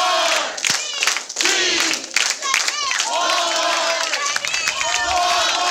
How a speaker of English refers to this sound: I want to see the fucking Oklahoma City Walmart cheer.